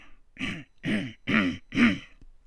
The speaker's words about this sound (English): Gotta clear my throat there just a little, because I'm going to be making a speech pretty soon.